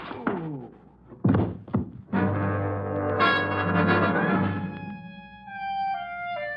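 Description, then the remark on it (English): A couple of heavy, dull thunks as a gun barrel strikes a man's head, followed by a sustained droning, ringing tone that gradually fades. No one speaks. “drops the barrel of his cannon across my head bone, and I spend the next 20 minutes pounding my ear on the broad room.”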